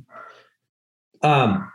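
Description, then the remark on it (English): A dog gives one loud, harmonic bark that slides downward in pitch, preceded by a faint breathy huff and a short silence. “Sorry, my dogs are barking in the background.”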